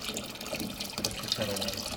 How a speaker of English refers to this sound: I use filtered water to make the bread, so then I heat some in a kettle and mix it with the cold and see what we have here.